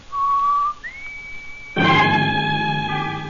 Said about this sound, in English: Outside, at the front of the building, Dale whistles the warning signal to Roy and Jonah.